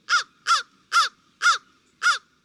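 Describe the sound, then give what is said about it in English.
A crow caws five times in a steady, evenly spaced series, each call harsh and raspy, clear with no voices or other sounds, during a cold woodland birding walk in West Virginia. “We did see some crows right off the bat.”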